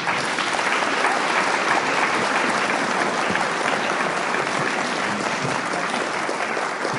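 A crowd applauds steadily, with dense, sustained clapping at an even loudness for several seconds and no voices audible over it.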